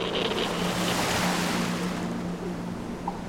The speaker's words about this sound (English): Heavy seas and strong winds hampered the rescue efforts of the Coast Guard, the Ornellai and the Rescue 117.